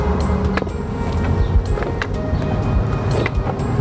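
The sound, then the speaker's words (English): A steady low rumble of a car driving, heard from inside, with road and engine noise holding constant and occasional light clicks and rattles over it. “Hop in the car.”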